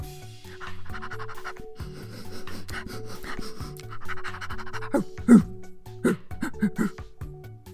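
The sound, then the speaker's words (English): A person imitates a dog panting, with quick rhythmic breathy huffs repeating steadily for several seconds, broken by a few sharper vocal bursts near the end. “Let's be a dog.”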